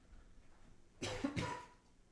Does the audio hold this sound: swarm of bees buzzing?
no